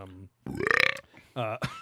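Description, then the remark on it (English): A single loud, drawn-out burp with a rising, rattling pitch, set between short bursts of voice before and after. “One burp.”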